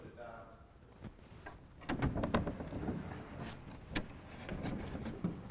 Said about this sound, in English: I have to open the blackboard here. I've never done this.